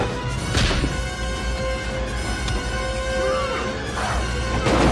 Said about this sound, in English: Whereas this one, the action sequences, they kind of stay still on it. They let it play out. You know, they're throwing punches back and forth. Great sound effects.